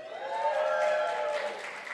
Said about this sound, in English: Let's just cheer